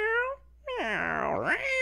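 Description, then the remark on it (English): A person imitates a cat while reading out chat messages, giving a short high meow followed by a longer, drawn-out meow that dips and rises in pitch, fairly loud with no other talking. “And I guess we'll finish up with me reading the chat as a cat.”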